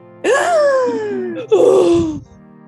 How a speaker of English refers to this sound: Yes, gasp your breath of air, for there be not much left.